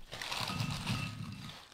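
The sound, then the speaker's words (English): Crinkly rustling of a packet of limited-edition Twisties flavoured with Doritos Flamin' Hot Cheese Supreme: a steady stretch of crackling plastic with small bursts of louder crunching, lasting under two seconds with no voices. “So hang on a sec, I'll do some rustling.”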